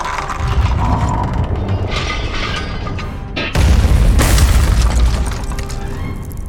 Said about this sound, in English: Not bad. Elizabeth managed to get them to shoot their own ship, and it looks like the shot went straight through to their engine room.